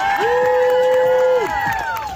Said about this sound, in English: Your Canadian veterans that have already fought for the freedom of this country, standing up to do it again. Give them a round of applause, man.